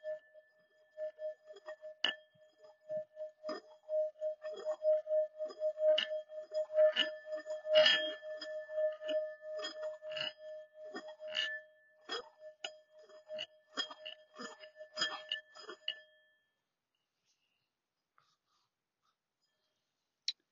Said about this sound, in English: Now, throughout this meditation, I want you to just try to follow the vibration of the gong and the singing bowl. Just follow the sound of it and think about nothing else.